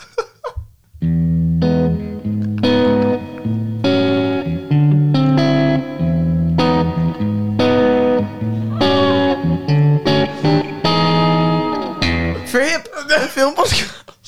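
A short, heavily processed radio show jingle with distorted, effected tones and a steady chorded pulse, ending in a rapid warbling, pitch-swooping flourish. No speech is heard.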